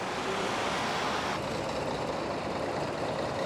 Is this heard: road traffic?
yes